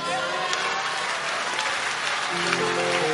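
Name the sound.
audience clapping hands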